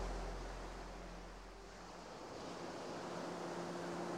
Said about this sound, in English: Listen to the gentle lapping of the waves on shore. In and out. In and out.